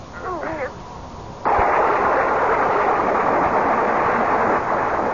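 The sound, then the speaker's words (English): After a brief wavering vocal cry, a sudden loud crack of thunder from a lightning strike during a storm bursts in and rolls on as a dense, steady rumble that barely fades over the next few seconds. “It was dark, and the thunder continued to grumble menacingly, so with what wits were left to me, I fled the dream and the storm and ran pell-mell for home.”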